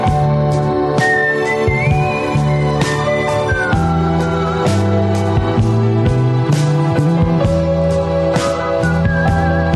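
whistled melody

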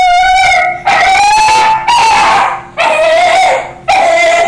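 dog howling

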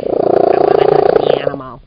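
cat purring loudly

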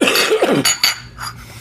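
cough

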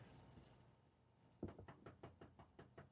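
knocking on a door

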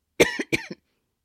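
cough

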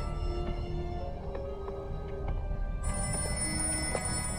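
old-fashioned telephone bell ringing

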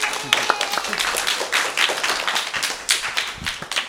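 audience applause

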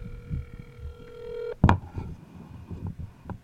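phone dialing tones

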